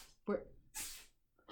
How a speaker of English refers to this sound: I really hope everyone heard that because Adrian just sneezed. Adrian's our cat. Not like another person or something like that.